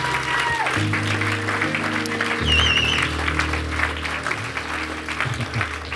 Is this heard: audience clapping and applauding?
yes